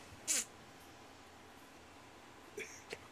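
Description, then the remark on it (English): A person lets out a short, sharp imitation of a cat's meow, followed by a few faint, brief noises in otherwise quiet surroundings. “Did you just fucking mew?”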